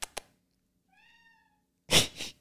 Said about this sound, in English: your cat's a loud cat. He is very loud.